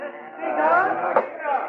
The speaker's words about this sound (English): Come on, Dabney. We get out of here and close the door.